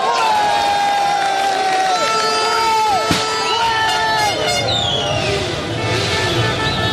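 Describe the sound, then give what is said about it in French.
Algerian football supporters cheer outdoors in an open-air setting like a stadium during a World Cup match, in a steady, loud crowd roar, with several blaring horns holding long tones that slide up and down in pitch, and a sharp crack about halfway through. “On est comme au stade, on est dans un stade en plein air.”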